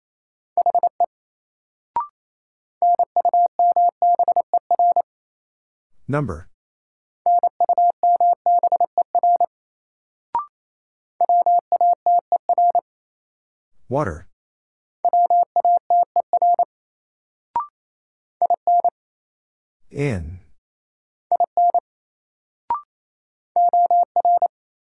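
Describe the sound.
Rapid Morse code at about 28 words per minute in a new-word drill of the top 100 words: a steady mid-pitched tone keyed in quick dots and dashes, broken by short pauses where a voice briefly speaks a single word.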